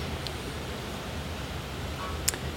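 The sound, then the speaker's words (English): Heavy rain pours down in a dense, steady hiss that never lets up, with one sharp click standing out just before the end. No one speaks. “Wow. Super rain.”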